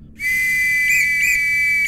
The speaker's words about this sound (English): Loud whistles suddenly overcame the ringing in his ears as several watchmen emerged on the scene, each armed with nightsticks.